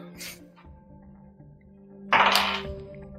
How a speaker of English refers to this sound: Okay. I can just roll more than one dice, you know? Oh, that's a one. That's favorable for you.